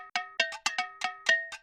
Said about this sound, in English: Later on, this quirky percussion sound is introduced right before the beat drop. I believe these are agogo bells, so I found a loop I had of agogo bells and chopped and pitched it to be as close to the beat one as possible.